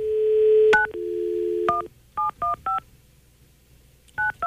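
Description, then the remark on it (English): A steady dial tone hums, then a string of short, clear touch-tone beeps punches out a number, spaced in quick bursts with brief pauses between them, fairly loud. “I was going to say, is it ringing? What's happening? Nothing's happening.”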